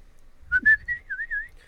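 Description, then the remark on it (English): A person whistles an imitation of a cardinal's call: a couple of short, bright rising notes followed by a longer wavering tone, fairly loud, lasting about a second. “I've always been like into cardinals, those birds. They're always in my backyard. That's probably why. And they whistle back at you.”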